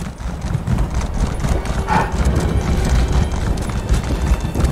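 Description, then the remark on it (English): Rapid, steady clip-clop of a video game skeleton horse's hooves galloping along, loud, with a brief tonal whinny-like sound partway through and a busy low rumble underneath. “We're gonna hoof it back over to the portal. Heading back over. Skelly horse, go!”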